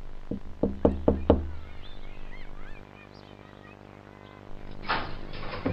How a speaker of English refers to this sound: Should I knock? Yeah, go ahead. Okay.